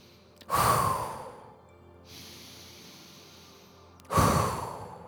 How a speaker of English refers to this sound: Pushing the air out, creating some fire. In through the nose, trusting the diaphragm and the belly to expel the air out through the mouth.